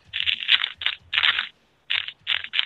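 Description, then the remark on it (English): Loud crunching and crackling comes in several irregular bursts with brief pauses between, like something crisp being crumpled up and chewed in the mouth. No one speaks. “Are you just crumpling it up in your mouth?”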